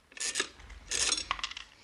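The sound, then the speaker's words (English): A dime is tossed into a radio: two raspy, scraping rattles followed by a quick, bright metallic clink, fairly quiet, with no voices. “Here's a dime. Throw it in the radio. No? Then I'll throw it a dime.”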